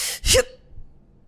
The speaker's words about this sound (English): So you find that breathing strategy like this, right? So I go inhale.